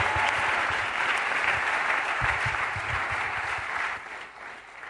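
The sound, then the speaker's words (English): A crowd applauds steadily, a dense wash of many overlapping hand claps with no break, holding at a strong level before easing slightly toward the end. “Clap for Jesus.”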